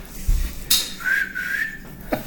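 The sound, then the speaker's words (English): Someone whistles one steady, sustained note for about a second, mimicking a steam whistle. A soft thump and a short breathy burst come just before it, all fairly quiet. “There's a lot of steam on this whistle.”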